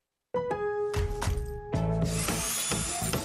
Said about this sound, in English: Nothing sounds quite like a dad's day at Lowe's. Like the DeWalt 20-volt max brushless drill and driver kit for $99.